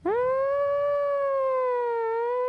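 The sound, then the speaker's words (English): A voice imitates an air raid siren: a single loud, sustained wail that swoops up at the start and then holds a steady, slightly wavering pitch for a couple of seconds. “Like some kind of giant warning or an air raid siren or something.”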